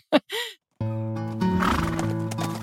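A horse snorts twice, then breaks into a loud, sustained whinny, with the clatter of hooves on hard ground running underneath. No one speaks.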